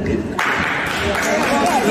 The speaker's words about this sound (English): I think that the woman was not done with her speech, but people started clapping to let her know she should be done.